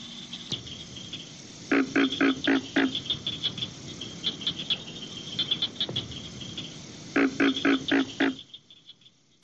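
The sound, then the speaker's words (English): A pig frog calls in two bursts of quick, rhythmic grunting pulses, loud, over a steady background chorus of chirping insects, with no one talking. “That must be the pig frog. That's the pig frog.”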